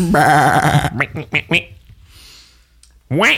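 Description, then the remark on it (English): A person imitates a sheep's bleat: one loud, wavering, nasal "baa", followed by brief bits of talking and a short pause before another voice begins. “So the icon that we chose to place in the threat slot was a sheep.”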